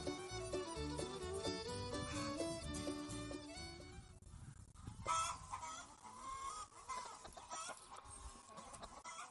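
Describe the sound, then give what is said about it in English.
A large flock of about 1,000 chickens on a farm, kept in a quarter-acre circle of electrified netting, clucking and squawking continuously, a dense overlapping chorus with occasional louder calls rising above the steady din. “This is the feather net where we have 1,000 chickens in a quarter acre circle of electrified netting.”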